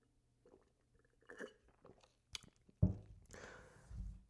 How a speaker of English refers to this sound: I'm gonna just keep sipping on this green juice.